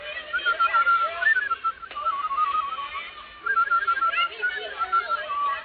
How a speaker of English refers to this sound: I hope I can still whistle.